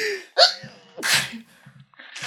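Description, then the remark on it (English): A loud sneeze from a person with a cold: a sharp voiced intake leads into an explosive, breathy burst, followed moments later by a shorter hissing exhale. “If you want to sneeze.”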